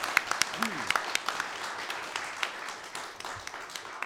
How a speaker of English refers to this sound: And some of us have been to Blowdown, the theatre production we've just seen, and I think we should give Garry Lyons here another round of applause for the play.